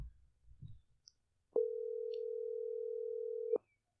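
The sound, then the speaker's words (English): A single steady ringing tone from an outgoing phone call sounds for about two seconds, clear and fairly loud, after some faint handling noise, with no voices present. “Answer your damn phone.”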